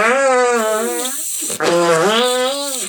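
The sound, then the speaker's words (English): Two loud hand farts in quick succession, each a buzzy, wavering squelch lasting over a second, with a brief break between them. “That was a terrible hand fart.”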